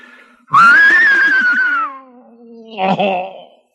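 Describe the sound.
Mel Blanc imitates an English horse's whinny with his voice: a loud, high, quavering cry that slowly slides downward and fades, then a shorter, rougher snorting burst at the end.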